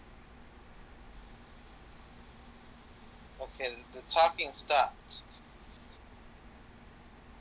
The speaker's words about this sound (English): All I hear is, like, static, like, whooshing. Yeah, that's probably my fan.